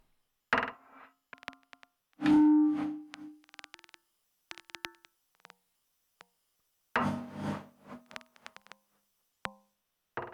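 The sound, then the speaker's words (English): Bursts of sharp, high-pitched clicks, processed with EQ and reverb, arrive in irregular clusters separated by silences, some carrying a soft reverberant tail and a brief tonal ring. Moderately loud, with no one talking. “So, okay, yeah, maybe these are, these clicks are probably just way too high for this EQ to really do much to it.”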